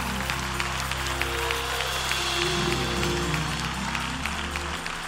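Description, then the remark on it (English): An audience claps their hands in praise to God in a sustained, steady burst of applause, dense and lively, with a low droning musical tone running underneath throughout. “Clap your hands and praise him.”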